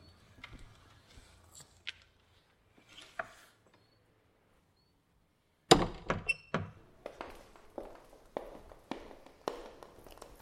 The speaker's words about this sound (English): Church and you close the door, every sound dies. I can only hear the sound of my footsteps echoing so loudly in the silence.